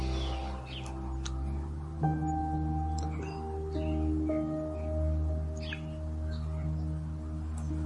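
Faint, scattered chirps from birds outside, heard from a bedroom over a steady low hum with no one talking.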